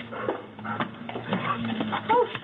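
A dog whimpers and whines in short, high-pitched bursts mixed with a few yelping barks, somewhat muffled, over a steady low electrical hum.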